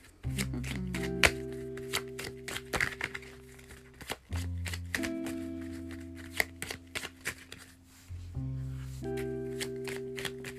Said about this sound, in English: Make a wish while I shuffle the cards.